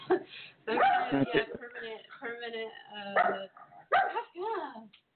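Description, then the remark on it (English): A dog barks several times in short, loud bursts, with whiny, voice-like yelps and murmurs filling the gaps between barks. “my dog is being awesome, and then now he decides, okay.”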